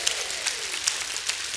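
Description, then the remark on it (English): An audience applauds together, a steady wash of many hands clapping at moderate volume, with a few sharper claps standing out and no one speaking. “If you believe it, give him another hand clap and a shout of praise.”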